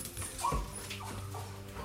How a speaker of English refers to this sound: The dog whimpers and retreats into a closet.